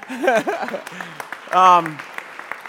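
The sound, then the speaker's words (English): An audience claps in a scattered, steady patter throughout, with voices calling out and cheering loudly over the applause, on the day of Pentecost. “Wait, we're clapping already.”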